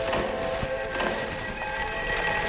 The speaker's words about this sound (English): Sound travels the same way. Start this bell vibrating.